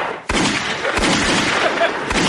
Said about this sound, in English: Listen, you gotta play the gunshots. There we go.